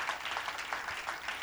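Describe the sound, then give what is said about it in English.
An audience claps together as a clap offering to the Lord during a sermon, a steady, dense patter of many hands, moderately quiet, with faint recurring surges in the rhythm and no voices over it. “Somebody give the Lord a mighty clap offering.”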